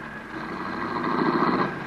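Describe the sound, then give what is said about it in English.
A car engine hums steadily, swelling slightly as the vehicle drives up to a club's stage entrance and settles into a low idle. No voices. “A car drove up to the stage entrance just as Peggy McConnell emerged from the club.”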